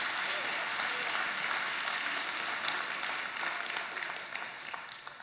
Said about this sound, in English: Let's give the Lord a hand clap this morning.